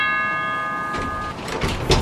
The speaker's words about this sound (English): Give a tug on that bell end, will you? Strange request, but okay. Dude, I meant the rope that's attached to the bell beside your head, mate.